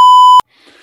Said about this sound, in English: I'm going to have this on the record for myself, but I'm going to bleep out what I'm about to say.